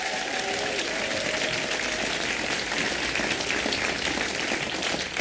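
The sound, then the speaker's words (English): An audience bursts into a sustained round of applause for a band, dense steady clapping filling the whole stretch at an even loudness, with a faint whistle or cheer early on and no talking. “Can we have a massive round of applause for …?”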